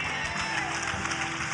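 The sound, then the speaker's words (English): An audience claps together, with only half of them clapping, a dense, steady wash of many hands that holds an even level throughout, with a faint murmur of voices underneath. “Only half of you are clapping.”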